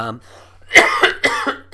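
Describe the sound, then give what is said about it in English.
A loud fit of coughing from a Christmas cough: four or five harsh, rasping coughs in quick succession, just after a brief fragment of voice. “Bit of a Christmas cough there”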